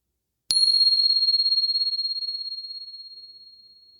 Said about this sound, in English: And just settling back in. And here comes the bell.